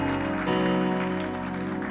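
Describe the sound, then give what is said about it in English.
A crowd applauds the praise and worship team, a dense wash of clapping that blends with sustained keyboard or organ chords ringing underneath at an even, moderate level throughout. “And while you're at it, please give a round of applause to the praise and worship team setting such a powerful atmosphere today.”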